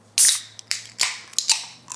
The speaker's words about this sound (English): We're going to grab our glass, grab our can, and let's get our fingers on it. Let's open her up.